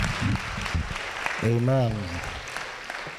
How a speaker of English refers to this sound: I want us to rise to our feet, and with a clap offering, let's welcome him as he comes and takes his liberty.